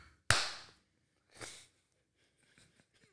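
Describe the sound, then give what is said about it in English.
A single sharp hand clap rings out and fades, followed by a softer, breathy burst and a few faint clicks and rustles before quiet. “All right, let me do the clap so I know where to cut it.”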